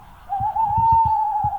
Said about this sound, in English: But the species used more often is one you've probably not heard of, the tawny owl of Europe.